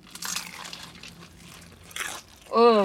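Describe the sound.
Loud crunching as someone bites into crispy fried chicken from a 10-piece bucket, a few crackly bursts of chewing, followed by a voice starting to speak at the end.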